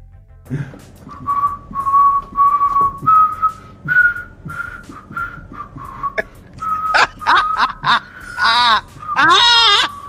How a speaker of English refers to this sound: For those who know that melody, we won't say the words, but for those who know the melody, yes, I brought that out in a whistle without laughing. As soon as I start laughing, the whistle is gone.